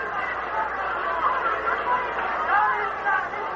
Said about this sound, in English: And you can hear the fans from Sumter, South Carolina, Bobby's hometown, applauding.